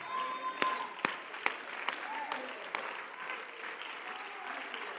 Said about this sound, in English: This would be a good time for everybody in the building to stand and clap your hands unto the Lord and shout with a voice of victory and say, I've got breath.